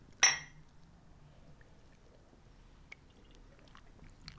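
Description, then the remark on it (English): A single bright clink of mugs knocking together in a toast near the start, ringing briefly, followed by quiet room tone with faint small sounds like sipping or handling. “Cheers to exploring. Cheers.”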